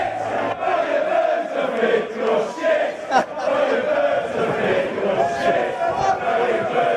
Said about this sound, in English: But let's not focus on that side of the England fans, and more on the witty repartee that they bring to the table with classic chants like this one, being hurled at an assembled crowd of Swedish fans.